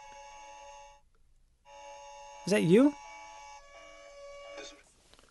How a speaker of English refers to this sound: This is a tornado warning, right? Yeah, or it's a different kind of warning.